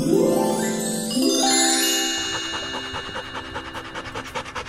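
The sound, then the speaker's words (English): Quick, rhythmic dog panting, a steady run of short breathy huffs, comes in over bright chiming, tinkling musical tones that ring out at the start. “Isn't it funny when your dog sticks out its tongue and makes panting sounds?”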